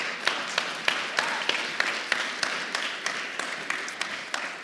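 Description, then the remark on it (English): A church audience claps together in a steady, even rhythm, sharp unison beats landing about three times a second over a dense wash of scattered applause, moderately loud and sustained throughout. “And that is definitely worth clapping about while I drink my water.”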